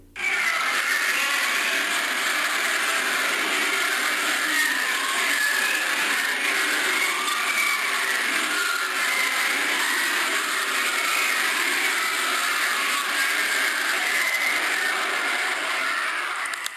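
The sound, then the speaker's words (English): A purported recording from a microphone sent down a borehole about 9 miles deep into the earth: a steady, harsh, unbroken roar with faint wavering high-pitched tones woven through it, holding at the same loudness for the whole stretch with no voices. “But they sent a microphone down there, and this is apparently the sounds of it that were heard.”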